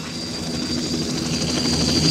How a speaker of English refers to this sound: The choppers are landing.